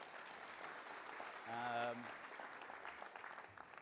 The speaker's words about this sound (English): Round of applause for my volunteer.